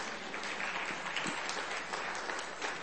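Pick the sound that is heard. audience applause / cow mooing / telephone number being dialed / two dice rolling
audience applause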